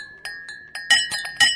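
Glasses clink together again and again as someone practises a holiday party toast, about seven sharp, ringing taps in quick, slightly uneven succession, with a bright tone that lingers between strikes and no voices.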